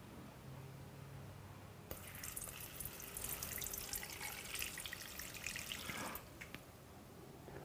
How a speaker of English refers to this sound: Now it's a bubbling witch's cauldron. Where's the bunny? You got some dry ice in there? Yeah, I did.